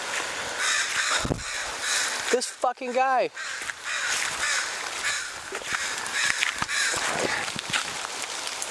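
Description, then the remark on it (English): A bird, which the man thinks is a bee catcher, calls from right above him: a quick burst of four or five harsh, downward-sliding caws, loud above a steady hissing background, with a man's brief remark nearby in time. “No, he's right above me. What do you want, bro? I think he's a bee catcher.”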